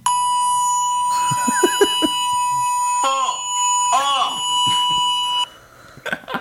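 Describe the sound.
A fire alarm blares with a steady, piercing electronic tone for several seconds, then cuts off near the end, while people talk loudly over it.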